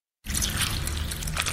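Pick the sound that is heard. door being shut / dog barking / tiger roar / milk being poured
milk being poured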